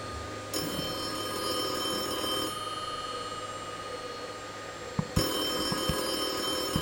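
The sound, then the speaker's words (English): A telephone bell rings insistently, a bright metallic trill sustained for a couple of seconds, pausing briefly, then ringing again loud with no one speaking. “I'll get it, Laura. Hello? Hello, dear. Hello, Mother.”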